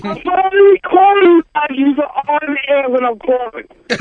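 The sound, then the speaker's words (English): A garbled cell phone call: a thin, band-limited voice talks in choppy bursts that cut out and break up, with short dropouts between phrases, ending in a sudden harsh burst of noise. “Well, wherever you are, you have crappy service.”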